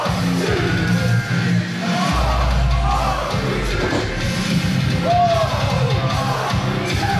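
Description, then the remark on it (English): A wrestling crowd cheers loudly and continuously as wrestler Con Artiste returns, a dense roar of yells and whoops with occasional higher shouts cutting through, sustained at a steady level for several seconds. “Crowd sure happy to see him back.”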